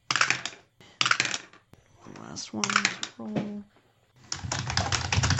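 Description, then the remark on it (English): Loud, hard typing on a computer keyboard in rapid bursts, clacking, with a brief spoken line between the flurries of keystrokes. “Oh, that's some aggressive typing shit. I just hear... Grr, grr, grr, it was very loud. You were very angry at that keyboard.”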